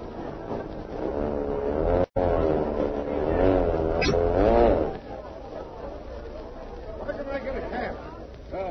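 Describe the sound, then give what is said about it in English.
An airplane engine drones loudly as plane number 10 comes in to land, its pitch wavering up and down for several seconds before the roar drops away to a low rumble with faint voices. “Look, number 10 landing. Back everybody, please. Watch your step. The plane will be up here in a minute.”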